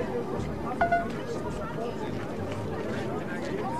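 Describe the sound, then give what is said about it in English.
A steady crowd hubbub in a busy tourist area, many overlapping voices blending into a continuous murmur, with a couple of brief brighter tones poking through near the start. “I've arrived in the middle of the tourist area. Luckily, there's such a crowd, nobody noticed me.”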